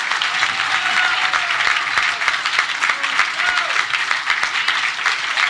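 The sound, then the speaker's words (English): A crowd applauds a speech steadily, dense clapping filling the whole stretch at an even, fairly loud level, with a few faint cheers or voices mixed in beneath the clatter. “Oh, the crowd liked that one.”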